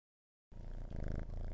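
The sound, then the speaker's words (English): A cat named Honey purrs after a brief silence, a steady low rumble with a faint rhythmic flutter lasting about a second, quiet and with no voices. “My roommate just walked in. It is a cat named Honey.”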